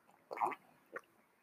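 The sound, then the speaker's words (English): A quiet slurping sip of hot coffee, followed a moment later by a brief swallow, with no talking. “I just took me a sip of coffee.”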